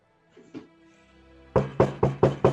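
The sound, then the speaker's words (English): Five firm, evenly spaced knocks on a wooden door, loud, following a couple of faint softer bumps at the start. No one speaks. “You all take up positions, but nobody heads to the door.”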